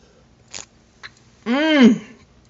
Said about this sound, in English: But if it ain't coffee for you and it might be tea, no matter what it is, like I said before, let's raise it right now and take our first sip together. Go ahead, go in, go take another sip. I'm taking one too.